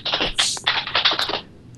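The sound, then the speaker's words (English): Rapid, clattering keystrokes on a computer keyboard in the background as a player works hard, a dense burst of clicks for over a second before trailing off, fairly loud with no voices. “And the awesome typing in the background is our studious, hard at work, fourth player,”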